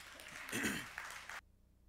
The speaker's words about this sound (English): And so that's why that expansion happened, because you gave. You can give yourself a round of applause for that.